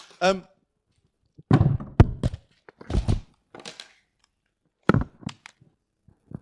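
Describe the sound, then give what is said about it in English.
An unbent hammer is handled and knocked against a hard surface, giving a scatter of irregular dull thunks and sharp taps, with a brief voice sound at the start. “Here's my hammer. I actually picked the one that wasn't bent.”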